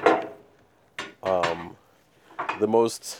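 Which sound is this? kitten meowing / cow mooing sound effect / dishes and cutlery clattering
dishes and cutlery clattering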